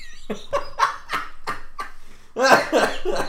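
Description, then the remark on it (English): A burst of hacking coughs tangled with laughter, several sharp rhythmic bursts in a row, ending in a louder, harsher fit of wheezy laugh-coughing. “Oh, I hate it when you make me laugh and cough at the same time.”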